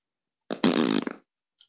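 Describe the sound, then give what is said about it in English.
A single loud, buzzy fart noise lasting under a second, raspy and sputtering as it trails off, followed by a faint short click near the end. “For you keeping score back home, that is a fart out of 10.”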